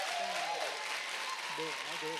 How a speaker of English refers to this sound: Do me a favor, Elevation. Can we get a slow clap going